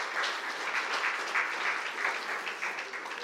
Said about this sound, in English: Let's give those kids a big round of applause as well.